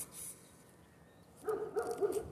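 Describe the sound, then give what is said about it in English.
A dog gives a quick run of short barks partway through, not loud, after a stretch of quiet outdoor background. “There's two dogs up there looking at us, wondering if, looking at us to say, have you found cats yet?”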